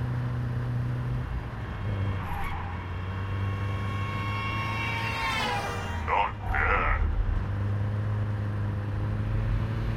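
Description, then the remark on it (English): A small car's engine, sounding like a Japanese kei car, drones steadily, then its pitch sweeps upward as it approaches, with a couple of brief higher whines before settling back to a constant hum. “This thing sounds like one of those, like, Japanese K cars, almost.”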